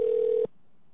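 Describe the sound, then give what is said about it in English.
A single steady telephone ringback tone, as a call is placed to reconnect a dropped caller, sounds for about half a second and then cuts off, leaving near silence. It is clear and moderately loud, with no voices. “Joe's going to try to call him again. I hear it ringing.”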